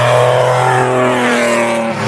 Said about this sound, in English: just got one of the safety cars coming through.